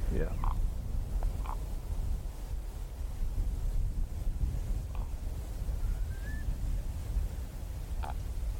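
A raven gives several short, hoarse croaks spaced a few seconds apart, plus one brief rising musical note, over a steady rumble of wind.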